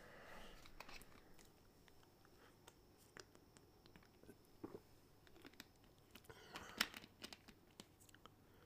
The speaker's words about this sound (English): No, I'm going to take a sip of my drink.